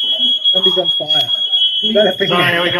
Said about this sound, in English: Somebody's on fire. Sorry, I've got to move. We've got a fire alarm.